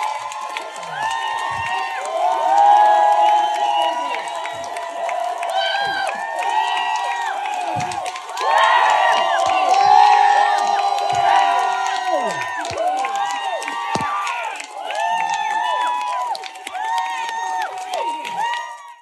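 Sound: protest crowd cheering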